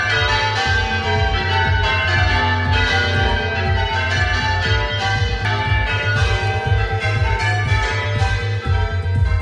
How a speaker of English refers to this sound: the wooden frame supporting the bells is rotting and is no longer safe to support the strain of the bells being rung